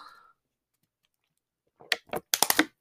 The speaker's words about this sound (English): All right, 1 second. I just gotta take a drink of water.